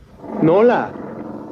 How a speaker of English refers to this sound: We left the midway crowd, the lights and the blaring calliope. Then the growl of jungle beasts came to me. We approached a small dressing tent.